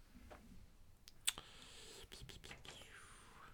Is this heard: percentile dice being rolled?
yes